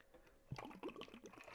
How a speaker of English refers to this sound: Water break. Sorry.